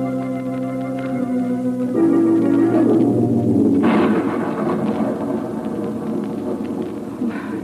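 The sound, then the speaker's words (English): A thunderstorm rolls through, with a deep rumbling roll of thunder swelling midway and a steady wash of rain, layered over low sustained organ-like tones. “I'm not afraid of the storm.”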